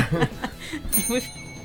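A small hand bell is rung once to get everybody quiet, its bright, high ringing tone sustaining and fading over soft chuckles and light laughter.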